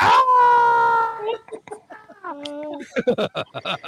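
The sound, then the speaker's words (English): A loud, high-pitched child's scream from the film Home Alone rings out for just over a second, sustained and piercing, then gives way to people talking. “Home Alone scream.”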